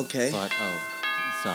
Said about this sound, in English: Oh my God, that's the doorbell. Let's get that.